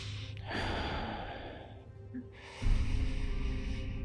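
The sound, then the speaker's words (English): A voice imitates heavy, labored breathing: two long, harsh breaths, one after the other, with no talking. “Vamok will fall to his hands and knees, and he'll start, like, just breathing very heavily.”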